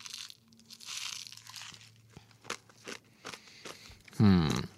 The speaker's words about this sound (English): So, first off, texture-wise, this is what I want a crunchy candy to be.